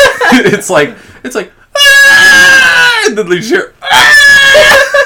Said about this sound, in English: There's a repeat and a sound effect. And I want you to listen to this next time you watch it, because you'll never forget it. Okay. There's a part where this little kid is screaming, and the baby yell that she does, it repeats, and it's so funny.